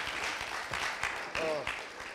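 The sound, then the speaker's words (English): A crowd applauds the youth in the morning with dense, steady clapping throughout, and a short cheer or vocal whoop rises briefly in the middle of the ovation. “Guys, can we just give a round of applause to all our youth this morning?”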